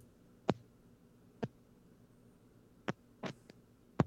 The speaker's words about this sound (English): Getting a lot of static.